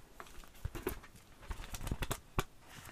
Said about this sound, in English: Don't you love the sound of paper?